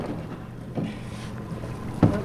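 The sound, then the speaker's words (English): A donated boat rocks out on open ocean water while divers clear old fishing nets, tires and batteries from the ocean, with a steady low rumble, wind buffeting the microphone, and a brief louder knock or splash near the end. No one speaks. “Sean is out here in his wetsuit, diving off a donated boat with a couple of his volunteers”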